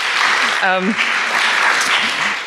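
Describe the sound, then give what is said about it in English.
Steady, dense applause from an audience fills the whole moment, loud, with a brief voice rising out of the clapping near the start like a short cheer. “I just want to give you guys a big clap.”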